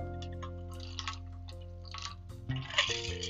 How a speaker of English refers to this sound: Sorry, I just sipped my drink. Because I was like talking so much